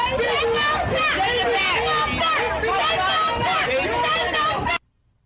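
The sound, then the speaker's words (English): A loud crowd of protesters outside an office screaming and chanting "close the border" and "take them back", many voices overlapping in a dense, rising-and-falling roar for about five seconds before it cuts off abruptly. “Yeah, so then I take it you were not one of these people outside of her office screaming and chanting, close the border.”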